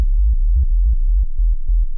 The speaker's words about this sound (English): That is, the notes are controlled by MIDI really fastly, really quickly. Yeah. But the whole song slows down too. And then goes up. And then we doubled it with the banjo. And we doubled it with the sine wave.